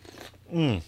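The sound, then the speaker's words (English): A quick sip of coffee: a soft slurping rustle, then a louder voiced exhale whose pitch slides downward, like a satisfied 'ahh'. “Needed a quick sip of coffee.”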